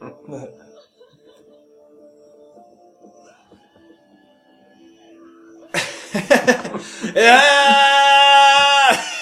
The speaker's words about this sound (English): Such a victorious yell.